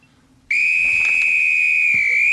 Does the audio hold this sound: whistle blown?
yes